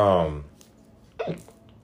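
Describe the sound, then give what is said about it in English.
Two sharp, involuntary hiccups from one person: a loud voiced one at the start, then a quieter, abrupt catch about a second later, with near-silence between. “One of my homegirls, and I hope she fucking hears this episode. Hiccups and all”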